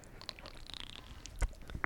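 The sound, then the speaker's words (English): Wet gulping and swallowing as a whole can of Arizona iced tea is drunk, with soft mouth clicks and a couple of sharper knocks near the end. Quiet, and no one speaks. “I was thirsty, so I just drank my whole Arizona right now.”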